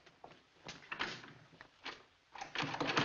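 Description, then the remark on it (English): A locked door is rattled and pushed in several quick, uneven bursts as someone jiggles its handle. The clatter is fairly loud, with no talking. “What's the idea of locking this door?”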